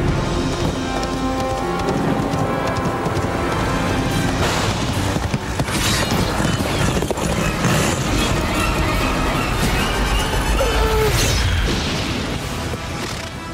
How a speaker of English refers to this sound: When the sheep start running and they don't stop coming and they don't stop coming. The sheep start going crazy and the thunder starts going and you can hear the hoofbeats.